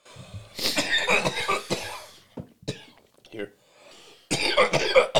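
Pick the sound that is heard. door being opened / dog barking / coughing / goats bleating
coughing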